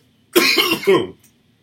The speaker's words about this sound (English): excuse me. Like I said last week, I've given up editing out the coughs. Sorry. It's kind of, you know, go with the flow on things. Excuse me.